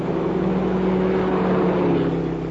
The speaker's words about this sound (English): Both cars are proceeding at a speed in considerable excess of the legal limit. Approximately 3 miles north of the boundary, their progress is observed by two troopers occupying a highway patrol car.